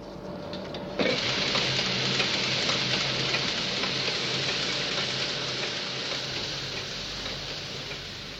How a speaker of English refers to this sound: The next sound we will air is hosiery knitting machine.